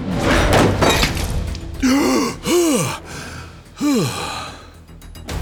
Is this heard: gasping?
yes